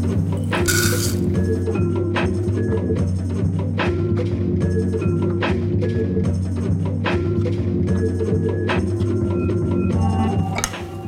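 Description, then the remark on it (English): Topping ingredients for an apple crisp are stirred together in a small bowl, with a utensil clinking against the sides in a quick, irregular rhythm over a steady low background hum. Fairly loud, with no talking. “And to make our topping, we're just gonna combine the rest of the ingredients in a small bowl.”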